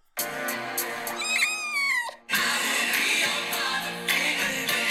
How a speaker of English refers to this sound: A meow.